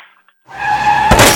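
After a brief silence, car tires screech loudly in a sustained, high-pitched squeal, ending in a sudden crash with a burst of shattering noise.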